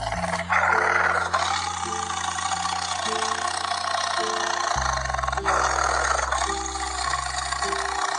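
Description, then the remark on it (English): A loud, sustained tiger roar of anguish rumbles on for several seconds, rough and growling, with deep droning low tones beneath it and no voices. “All of the animals for miles around shook as they heard Tiger roar of anguish.”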